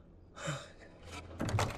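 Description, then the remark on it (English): A door opens with a short creak and a rustling scrape, followed by a louder knock or thump as it swings fully open. “What are you opening the door for? You're not supposed to open the door, for pity's sake.”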